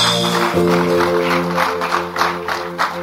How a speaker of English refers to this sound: Give him a mighty clap offering.